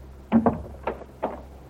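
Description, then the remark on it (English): A door is pushed shut: a quick pair of dull wooden knocks, then two softer thumps spaced apart, with no one speaking. “Excuse me, Paul, if I shut the door.”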